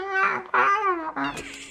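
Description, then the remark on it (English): Three drawn-out, whiny cat meows in quick succession, loud, with a wavering pitch, sounding like a human voice imitating a cat rather than a real animal. “Do you think that the cat is voiced by your guy again?”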